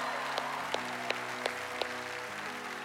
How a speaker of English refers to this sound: I will be honest with you guys, I do judge claps a little bit, and I felt like for Jesus, that was probably about a B, B minus a little bit. So we're going to do that again, because I think he's worthy.